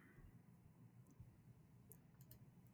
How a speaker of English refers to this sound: All right, let's roll the dice to see what's up next.